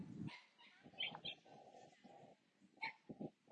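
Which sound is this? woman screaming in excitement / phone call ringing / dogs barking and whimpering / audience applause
dogs barking and whimpering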